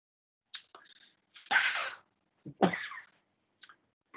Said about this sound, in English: Well, I'll start by coughing, since it's the living in the era of COVID.